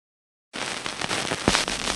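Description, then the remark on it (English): After a brief silence, vinyl record crackle starts up: a steady bed of hiss peppered with dense pops and clicks, one sharper snap standing out midway, with no voices. “The crackle, the blinded conversation crackle come in.”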